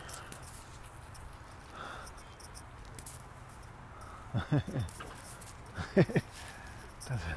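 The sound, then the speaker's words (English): A small dog whimpers in a few short, high-pitched bursts, two close together and then another pair a moment later, over a faint background hum. “It's a cute dog. Don't attack that cute little dog.”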